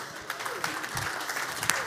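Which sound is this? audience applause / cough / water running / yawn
audience applause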